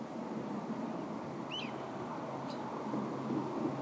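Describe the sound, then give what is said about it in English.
Birds chirp outside: two brief, high-pitched calls about a second apart, the first a quick warbling twitter, both fairly faint over a steady, rushing, wind-like background hiss. No one speaks. “I'm sorry for the quietness, unless you like birds and whatever noises, cars passing by.”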